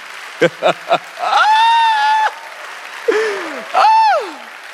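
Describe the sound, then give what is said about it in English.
An audience claps during a sermon on discipleship in a steady wash of noise while voices cry out over it: three short sharp whoops, then long rising and falling shouts. “The reason why I love y'all, the fact that I could be preaching on discipleship and y'all clapping like y'all clapping, the world's not going to be ready for y'all.”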